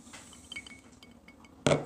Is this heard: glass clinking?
yes